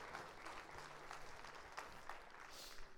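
An audience claps to thank the pastor for the word that night, a dense wash of many hands with no clear rhythm, holding an even, fairly loud level throughout with a few sharper bursts.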